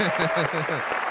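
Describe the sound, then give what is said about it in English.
A brief burst of steady applause, dense clapping filling the moment while voices whoop and call out over it. “A round of applause”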